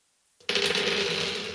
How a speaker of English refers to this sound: Let me get some dice here.